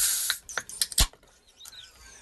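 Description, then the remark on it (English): Harp lager is poured into a glass, filled about halfway for a black and tan, a fizzy splashing hiss broken by a few sharp clinks and taps, fading to a quieter foamy trickle at the end. No one speaks. “So, here we're going to do a Harp. You fill it up a little bit about halfway.”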